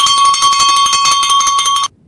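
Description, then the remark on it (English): A loud, shrill electric bell rings continuously with a rapid rattling buzz for nearly two seconds, then cuts off abruptly into near silence. “Oh, yeah, that bell just goes right through you, doesn't it?”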